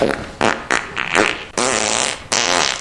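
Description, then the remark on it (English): Several loud fart sounds: a quick string of short sputtering blasts followed by two longer, drawn-out rumbling ones, with no talking. “An encore performance from Cindy Jacobs, the farting prophet”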